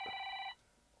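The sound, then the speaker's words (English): A landline telephone in Alex Jones' old studio, the original InfoWars studio at Austin Public Studios in Austin, rings once, a loud, bright electronic trill lasting about half a second before cutting off abruptly into quiet. No one speaks. “Is that the phone again?”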